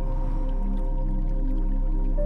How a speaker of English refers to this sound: Listen to the sound of the water.